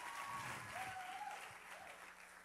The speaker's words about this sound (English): Come on, clap for him. Clap for him well.